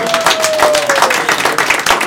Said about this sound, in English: Correct, you got it right. Yes, big round of applause.